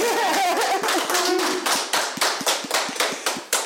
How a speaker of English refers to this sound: so please let's give a very big H-O-A-H welcome and round of applause to one of the founders and owners of Love Hills Rescue